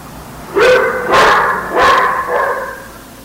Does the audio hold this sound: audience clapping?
no